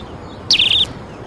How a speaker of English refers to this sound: Like these little birds around me here at cafe anyway.